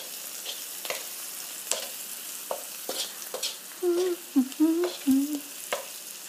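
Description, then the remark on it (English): Onions sautéing in a pan over medium to high heat, with a steady sizzle broken by scattered sharp crackles and pops, plus a few short low whining tones near the end. No one speaks. “All right, so what you want to do is just wait for these onions to get translucent, because that's when you know that they're cooked.”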